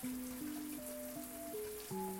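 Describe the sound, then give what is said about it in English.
Steady hiss of warm shower water pouring down, soft and continuous, with a gentle sustained melody of stepping tones playing over it; no voices. “thankful the shower noise, the pouring down of water, blared out”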